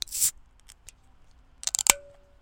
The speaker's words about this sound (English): Picture me on my couch in the middle of the afternoon on a Monday, opening up a 96-calorie fine Pilsner beer and listening to the crack, the sensual sound of ASMR.